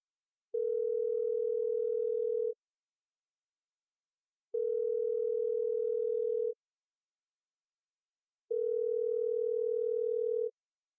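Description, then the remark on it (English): A phone's ringback tone purrs three times as a call is placed on speakerphone, each steady electronic buzz lasting about two seconds with equal pauses between, clear with no one talking. “Or should we just do the phone call? Yeah, let's do the phone call.”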